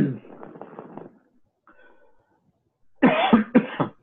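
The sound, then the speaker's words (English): A person coughs after something went down the wrong pipe, first in a muffled, sputtering run, then in two loud, harsh bursts after a brief pause. “sorry, something went down the wrong pipe a little bit there.”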